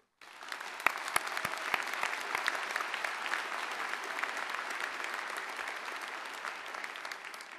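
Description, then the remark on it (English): A crowd applauds steadily for the graduating PhD and master's students of the class of 2017 and their loved ones, hundreds of hands clapping in a dense, even roar that starts with a few sharp claps and holds at a constant level without fading. “To all graduating PhD and master's students, please give yourself and your loved ones, those who have provided you the support and the inspiration you needed to reach this day, a big round of applause.”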